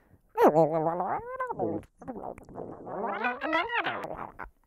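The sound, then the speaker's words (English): A voice imitates cats with a run of drawn-out, wavering meows and yowls that rise and fall in pitch. The sound is fairly loud, with only brief pauses. “The cats are going crazy oh, for it.”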